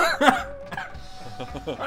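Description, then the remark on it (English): A person lets out a cough-laugh: a sharp, sputtering burst followed by a quieter run of short, breathy chuckles with coughing mixed in. “Sorry, that was funny and it made me cough laugh.”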